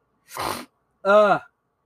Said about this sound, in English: I'm all congested from sneezing.